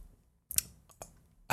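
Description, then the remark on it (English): Crisp rustles of paper mail being handled: a few short crinkling bursts separated by quiet gaps, ending in a louder scrape of paper. “Ooh, I've gotten a paper cut from all this mail.”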